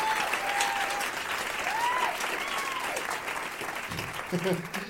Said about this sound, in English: And let's have a big round of applause for all of my guests.